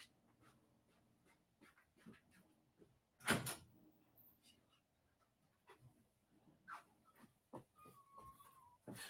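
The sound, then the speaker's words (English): A hotel room door in New Jersey is opened to let the maid in: one sharp, loud clunk of the latch stands out, surrounded by scattered soft clicks, shuffles and handling noises, with a faint high whine near the end. “I got to open my door.”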